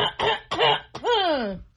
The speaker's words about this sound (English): When you do that sound when you clear your throat, I do this.